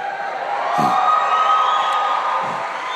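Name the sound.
audience cheering and applauding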